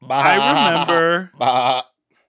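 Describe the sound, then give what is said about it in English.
A human voice mimics a goat's bleat in two loud, quavering cries, the first long and wavering, the second shorter, then silence. “How does a goat sound?”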